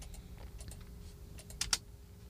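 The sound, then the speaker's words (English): Quiet clicking and tapping on a computer keyboard and mouse, a loose run of light keystrokes ending in two sharper, louder clicks, over a low background hum. “I know, like, I'm playing with the computer stuff. It's all good. Clicking, so, click, click, click, click, click.”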